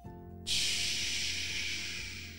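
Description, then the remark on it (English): A voice imitates pouring rain with one long, steady, breathy hiss that starts abruptly after a brief quiet moment and holds for about two seconds, fading only slightly toward the end. “Can you make the sound of rain?”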